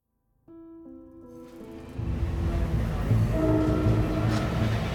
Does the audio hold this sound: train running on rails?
yes